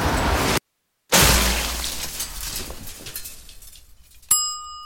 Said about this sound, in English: My chocolate explosion cake exploded! Do you think it was the microwave, Bob? Yes, Larry. I think it was the microwave.